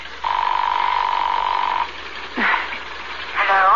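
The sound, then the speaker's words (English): A telephone ring tone on the line of a call dialed from New York to a home number: one long, steady buzzing tone lasting over a second, followed by a pause and a couple of short, sweeping sounds. “It's ringing.”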